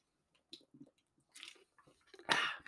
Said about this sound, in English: Just going to have a swig of my Woolworths spring water.